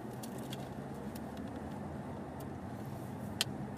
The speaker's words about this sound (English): There's like, I don't know how many cars in this area. It's ridiculous. Every direction is fucking packed.